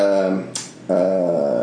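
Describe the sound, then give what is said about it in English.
A dog growls and whimpers in two drawn-out, tonal bursts separated by a short breathy gap, loud and clear with no one talking over it. “There goes the dog.”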